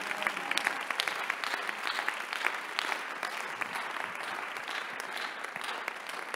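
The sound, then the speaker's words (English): During a sermon, an audience breaks into steady applause for the Lord, many hands clapping in a dense, crackling wash that holds at an even level for several seconds with no voices standing out. “Give the Lord a clap of and I'm preaching.”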